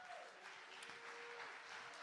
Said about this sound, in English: Stand to your feet and clap your hands, and let's give God the praise. Somebody praise Him.